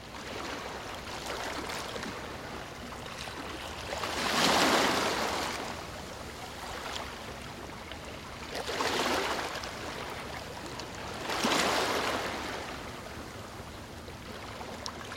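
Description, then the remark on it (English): Sea waves splash onto the shore in a steady cycle, three broad surges rising and receding over a constant background wash of water, with no voices. “relax with nature's tranquil music, calming sounds of sea waves splashing on the shore.”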